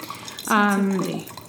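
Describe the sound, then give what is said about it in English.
Cabernet wine from Round Pond Winery in Napa Valley pours through an aerator, a brief tonal, gurgling stream of liquid lasting under a second against a quiet background. “I'm going to keep pouring. I feel like this aerator is not. It's really not like coming out very quickly.”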